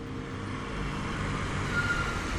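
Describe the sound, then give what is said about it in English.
A blue-and-white Ford pickup truck from about 1960 rumbles low and steady, growing slightly louder as it draws closer from behind on a road in heavy snow during a blizzard, with no voices over the continuous road noise. “And then I heard a truck come up behind me.”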